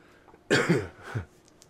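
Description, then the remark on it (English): A single harsh cough bursts out, followed a moment later by a shorter, rougher throat clearing, then quiet. No one speaks. “All my rambles, my pauses and coughs and all that shit.”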